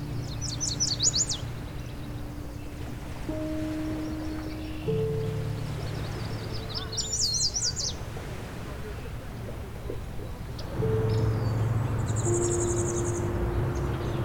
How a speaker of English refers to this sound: And here's the song of the chestnut-sided warbler, which has the mnemonic, "Pleased, pleased, pleased to meet you."